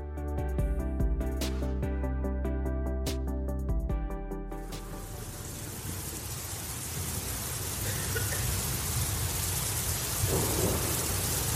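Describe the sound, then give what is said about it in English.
After a few seconds of sustained tones and sharp hits, a steady downpour takes over, with thunder rumbling low and continuous underneath. The storm sounds fairly loud, and no one speaks. “How many of you just love a good storm?”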